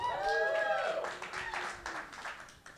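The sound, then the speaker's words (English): A live audience in California claps and cheers, with a loud rising whoop at the start over a dense wash of scattered applause that gradually thins out. “Man, I know not everybody clapped because she had to arrest at least one of you.”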